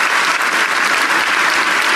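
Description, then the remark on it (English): A large church audience claps and applauds steadily in praise of God, a dense, continuous wash of many hands at full volume with no speech over it. “If you're going to clap, give Him praise. Give Him real praise.”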